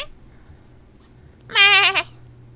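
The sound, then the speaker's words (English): A person lets out one loud, wavering goat-like bleat, about half a second long with a shaky vibrato, with near silence before and after. “Oh my god, you're a goat.”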